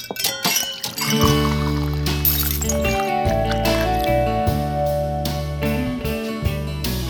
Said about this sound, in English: It's called a glass harp.